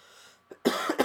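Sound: cough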